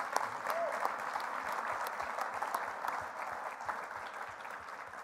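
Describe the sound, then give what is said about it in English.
A room full of people at a Sunday church service applauds a couple being commissioned as official City Hill Ministry partners. The applause is a dense wash of many hands clapping at once, holding at an even level throughout, with faint voices mixed in. “So maybe one more round of applause, and then we'll pray over them.”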